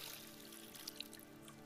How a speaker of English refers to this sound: The King of Kings, the Messiah, the Lord of Lords, kneels down and takes the towel and he begins to pour water into a bucket just like this. He begins to pour water.